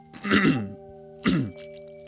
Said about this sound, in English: Cough, coronavirus.